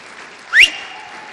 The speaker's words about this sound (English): Man, give the Lord a clap, please.